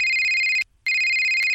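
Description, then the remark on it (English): An electronic phone ringtone from an incoming spam call plays loudly, two bright bursts of steady high-pitched tones separated by a short silent gap, with no one speaking. “I looked at my phone. Great, just what I need now, a spam call.”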